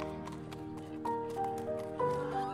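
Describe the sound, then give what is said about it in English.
Hooves of a horse-drawn cab clip-clop in a steady rhythm, with sustained tonal sounds over the top and a faint voice in the background. “Breaking free, as the coward fled towards Coventry Street, he swiftly hailed a horse-drawn cab to make his escape.”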